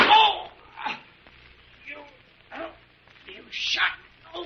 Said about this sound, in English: My gun. Pick it up, young lady. I knocked it out of your hand, Devers.